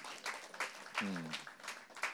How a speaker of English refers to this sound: That's good news. You can clap. Yeah, yeah, that's really good news.